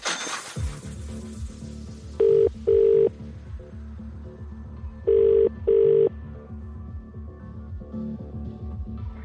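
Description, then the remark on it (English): A telephone ringback tone of an outgoing call sounds twice, placed by a radio station to a Cash Hits contest entrant. Each ring is a quick double burst of steady electronic tone, heard down the line over a low, murky background rumble with no one speaking. “If you have all 5 written down, and if you've entered to play Cash Hits, you could be getting a phone call right now.”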